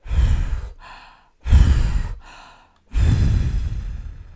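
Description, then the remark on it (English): A voice imitates the wolf huffing and puffing to blow the straw house down: three loud, forceful breathy blasts in a steady rhythm, each trailing off into a softer, airy breath, with no talking. “The wolf huffed and he puffed and he blew the straw house down.”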